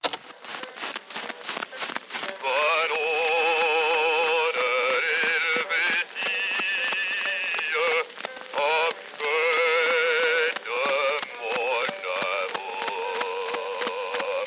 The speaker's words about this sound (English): The University of California, Santa Barbara has a historical cylinder archive, which is fantastic. Here, take a listen to a Laurier cylinder circa 1898 from the archive.